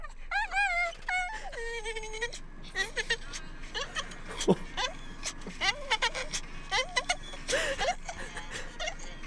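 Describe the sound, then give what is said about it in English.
A dog lets out a string of strange, strained, deep-throated scream-like vocalizations, warbling and rising in pitch. The loud bursts come in quick, uneven succession, some drawn out, others short and choppy. “These weird, like, deep throat, like, like dog screams.”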